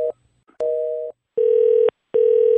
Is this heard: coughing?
no